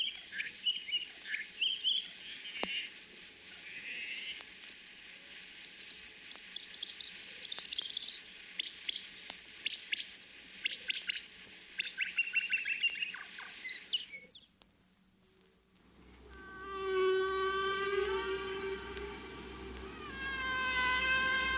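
Rapid, high-pitched chirps, squeaks and warbling whistles repeat in patterned phrases like birdsong, then shift to rising tonal sweeps over a low rumble. This is a humpback whale song sped up fourteen times to birdsong speed, with no talking.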